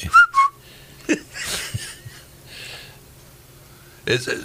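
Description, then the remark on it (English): A person gives two quick, sharp whistled chirps imitating a cockatoo, loud, followed by breathy chuckles and soft vocal noises. “And, of course, I was adding my cockatoo whistle there.”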